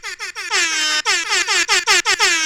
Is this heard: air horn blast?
yes